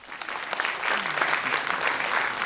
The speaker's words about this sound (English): because I think it's worth saying, actually, it's interesting you applauded then.